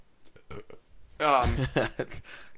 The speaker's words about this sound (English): did you belch?